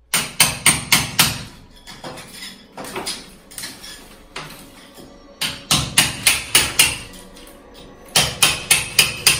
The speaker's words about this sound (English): Whatever it was, it's behind that wall. Joe, take this crowbar. I want you to knock that wall down.